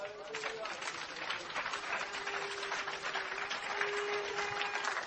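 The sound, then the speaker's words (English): A crowd claps for Jesus steadily for several seconds, a dense, even wash of many hands at a fairly constant loudness, with faint voices and a few cheers mixed in beneath. “Clap for Jesus.”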